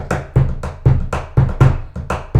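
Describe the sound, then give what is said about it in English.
Hands drum a rhythmic beat on a metal chair, about ten crisp, loud strikes in quick succession, mixing deep thuds with sharp ringing slaps, with no talking. “The clip of you guys, you playing on the chair, that metal chair recently, that was so sick.”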